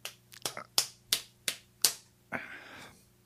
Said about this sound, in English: Slapping my hand to work out the pain.